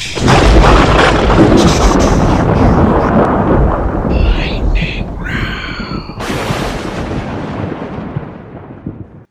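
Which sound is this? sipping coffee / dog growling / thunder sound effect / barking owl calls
thunder sound effect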